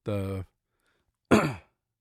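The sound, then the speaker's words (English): Two short coughs a second apart: a voiced, throaty one followed by a rougher, breathier burst, with silence between and no talking. “Keep coughing.”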